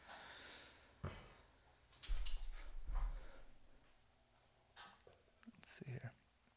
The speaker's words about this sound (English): This fucking dog is just burping over here. It's gross.